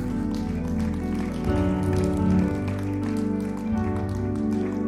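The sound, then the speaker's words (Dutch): An audience claps steadily throughout, applauding God, a dense crackle of many hands, mixed with sustained keyboard or organ chords that shift twice. No one speaks. “Geef God een applaus.”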